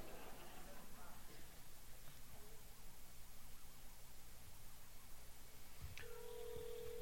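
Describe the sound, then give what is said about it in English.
After a steady hiss of background noise, a click is followed by a sustained electronic phone tone near the end as a telephone number is dialed. “Yeah, I'm dialing the wrong number already.”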